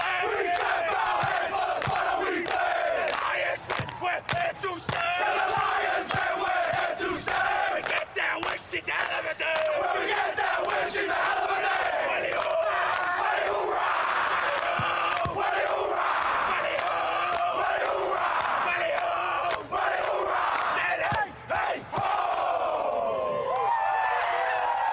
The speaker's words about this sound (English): Not many teams can celebrate better than this. This is good. I've watched this about 10 times. I love the team song they get into. Yes. We've got to get into the team song